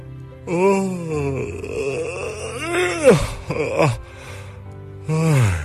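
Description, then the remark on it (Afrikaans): A long, drawn-out yawn with groaning, moaning vocal tones that rise and fall, breaking briefly near the middle before a final stretched groan, fairly loud. “Kyk, het al lekker om te gaap, nee.”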